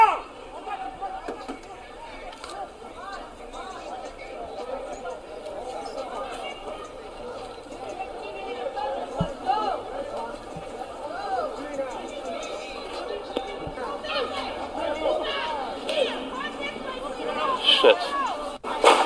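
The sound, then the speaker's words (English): A few gunshots pop sporadically, dull low cracks rising out of a steady crowd murmur as many people chatter and call out, at a gathering on the anniversary of George Floyd's death. “These seem to be gunshots.”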